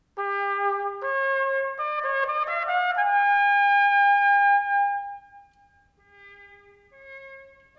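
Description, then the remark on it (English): A mid-19th-century echo cornet, with its fourth valve pressed so the whole instrument sounds through the constricted echo bell instead of the normal bell, plays a short phrase of sustained, stepping notes, then fades to a few softer, thinner tones, with no voices. “There's a fourth valve here, and when that's pressed, the whole instrument sounds with this constricted bell rather than the normal bell.”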